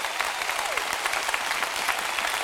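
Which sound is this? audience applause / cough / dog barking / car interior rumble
audience applause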